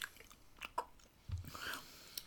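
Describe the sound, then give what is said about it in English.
Soft, wet chewing of a gummy jelly bean, with irregular squishy smacks and a few sharper clicks over about two seconds, fairly quiet and with no talking. “I have to remind myself it's just a jelly bean.”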